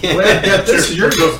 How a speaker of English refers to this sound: You know, so we're going to cheers that. You gotta join us.